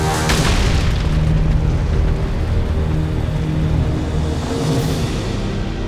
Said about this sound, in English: Jormungandr's body crashed into the battlefield next to him, causing Asgard to shake violently.